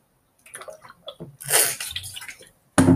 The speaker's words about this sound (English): I'm just gonna drink some water, because I just finished answering a lot of math things, like, you know, math questions.